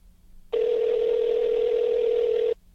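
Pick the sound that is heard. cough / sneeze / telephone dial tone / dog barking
telephone dial tone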